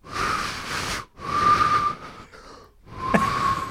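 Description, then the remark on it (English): A failed attempt at a finger whistle, made with the little finger and index finger in the sides of the mouth: three breathy, hissing blasts of air, each with only a thin, wavering hint of a tone that never becomes a proper shrill whistle. “generate a shrill whistle by just sticking, what is it, their little finger and their index finger into the sides of their mouth and whistling.”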